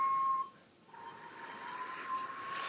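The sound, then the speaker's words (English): An iPhone flute app, played by blowing into the phone's microphone, sounds a steady, pure mid-pitched note over breathy blowing noise. The tone cuts out briefly, then returns and holds with a rising hiss of breath. “I am playing a flute with an iPhone.”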